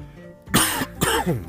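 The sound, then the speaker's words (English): Two harsh, throaty coughs in quick succession, fairly loud, with a short pause between them and no talking. “If you could tell by the cough, I got everything going right now.”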